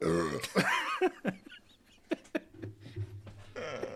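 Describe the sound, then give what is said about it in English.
A loud, drawn-out burp rumbles, followed by a few short clicks and mouth noises, then a lower, quieter guttural rasp near the end. “the next one down on the stuff from this area is Karelian hot pot, and I'm gonna burp.”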